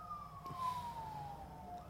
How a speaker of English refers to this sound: We in them dirty streets. You hear them sirens? That never happens in Kennedy.